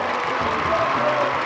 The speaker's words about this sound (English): The headlining act is …. A dozen men in crisp blue suits and fedoras walk onto the stage. All samba legends from the 60s and 70s. They are greeted with huge applause.